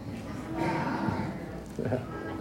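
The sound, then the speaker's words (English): A person imitates a sheep's baa, giving two drawn-out, wavering bleats, the first longer and the second shorter after a brief pause. “Nobody wants to baa.”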